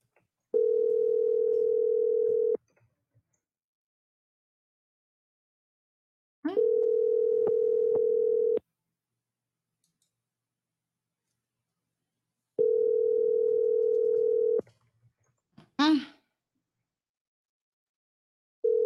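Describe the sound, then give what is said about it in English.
An outgoing call's ringback tone while calling a man back, a steady low beep lasting about two seconds, repeats three times with long silent gaps, followed by a brief click as the line connects. “Let's call him back one more time and ask him if he can be sensible this time.”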